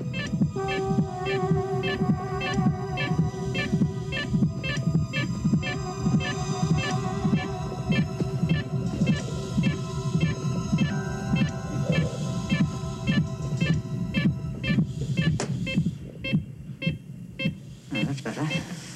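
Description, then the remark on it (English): A hospital heartbeat monitor, as doctors save a man from death, beeps in overlapping steady rhythms, showing two heartbeats at once, over a deep throbbing pulse and a constant low hum, moderately loud. “And we see as he's kind of being, brought, kind of saved from death by the doctors, on the heartbeat monitor, we suddenly see two heartbeats.”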